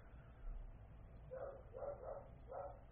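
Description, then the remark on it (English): A female dog, staying seated where she is, barks four times in quick, uneven succession after a doorbell rings, the barks sounding muffled against a low background rumble, with no one speaking. “But this means she's going to just sit where she is and just bark.”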